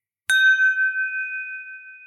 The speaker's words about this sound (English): Did you hear that? Here, try this again. It's my chime against my Glencairn glass. All right, ready? Cheers.